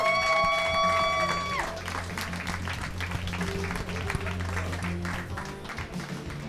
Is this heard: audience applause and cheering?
yes